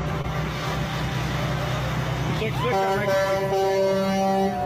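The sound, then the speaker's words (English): A vehicle horn honks loudly partway through and holds as a steady, sustained blare until the end, over a low rumble of traffic. “Honking.”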